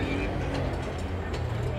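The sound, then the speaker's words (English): Steady traffic coming into the city rumbles continuously, a dense low drone of engines with no pauses, and faint indistinct voices mixed into the background. “You can hear the traffic, just so much traffic coming into the city.”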